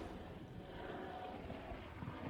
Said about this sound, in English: In the background, you're going to be hearing some helicopters flying up above. There is a fire in the Burbank Mountains.